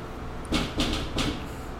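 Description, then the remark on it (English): Three dull knocks on the door of a bar by someone arriving who thought it was open, slightly uneven in spacing, sounding a little muffled, with no voices while they happen. “All right, you guys probably heard that knock. That was a friend of ours coming to the bar.”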